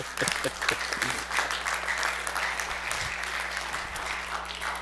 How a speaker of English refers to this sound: We ought to give ourselves a good clap. Let's do that. Come on.